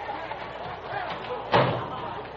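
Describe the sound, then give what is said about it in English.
A side door bangs shut once with a sharp, solid thud midway through, over a steady noisy background with faint murmuring voices. “Out the side door.”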